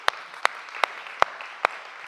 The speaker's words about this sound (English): yeah, we've already clapped for that. Woo, come on.